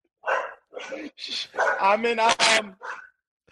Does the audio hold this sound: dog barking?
yes